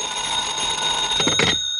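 A telephone rings with a steady, shrill electronic tone, strongest in a quick burst of pulses near the end before cutting off. No one speaks.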